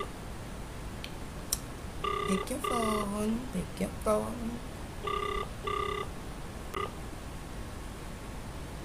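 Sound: outgoing phone call ringing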